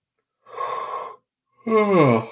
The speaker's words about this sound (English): That wasn't any judgment on you. I'm just yawning because I'm very tired.